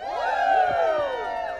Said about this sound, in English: All right, so if I can get one more woo from the crowd.